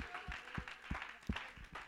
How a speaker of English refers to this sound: Oh, somebody clap your hands and shout unto the Lord with a voice of triumph.